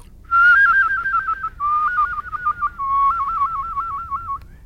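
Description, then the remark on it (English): A person whistles rapid trills, quickly alternating between two close notes in three short phrases, each pitched a little lower than the last. Clear, with no talking. “Trills.”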